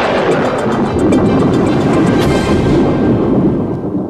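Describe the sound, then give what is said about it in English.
A train rumbles past on the tracks, a loud, steady roar with faint rapid clacking riding on top, easing off slightly in the final moment. No voices. “Okay, a plane crashed on a train track, and then a train hit the plane.”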